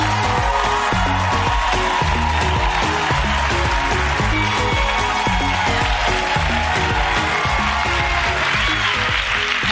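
An audience claps and cheers steadily for about ten seconds to welcome guest Dominique Foxworth, former NFL player and NFL Players Association president, a dense, loud wash of applause over a band playing a rhythmic, bass-heavy groove, with no talking.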